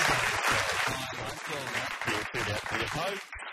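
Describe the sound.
Studio audience applause: a dense, steady wash of clapping that holds for several seconds, with cheering voices mixed in, easing off briefly near the end.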